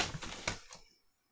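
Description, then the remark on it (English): Papers drop with a quick burst of rustling and a few sharp slaps over less than a second, then fall silent. No one speaks. “I dropped my papers.”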